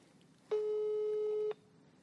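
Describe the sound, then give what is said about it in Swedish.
A telephone busy signal as a call goes unanswered: one steady, mid-pitched electronic tone lasting about a second, starting and stopping abruptly over a faint background hiss, with no talking. “Hon är också en person som så här klickar med mitt samtal om hon tycker inte är nöjd med min insats.”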